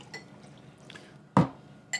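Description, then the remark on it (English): A sudden loud liquid plunk as a shot glass of cold Jägermeister drops into cold Monster energy drink to make a Monster Bomb, with a faint glassy clink just after, over quiet background noise. “Make sure the shot with hand with the shot glass. Elbow up. Elbow up. Parallel. Like this. Boom. Dump.”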